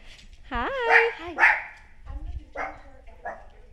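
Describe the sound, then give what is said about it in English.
A dog lets out a high, wavering yelp followed by several sharp barks, spaced irregularly over a few seconds. “Hi, puppies.”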